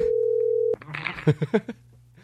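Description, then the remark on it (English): A steady, mid-pitched telephone tone of a caller phoning in to a show hums for under a second, then cuts off abruptly into a burst of rustling clatter and a few soft knocks over a low hum. “Someone's calling in the show.”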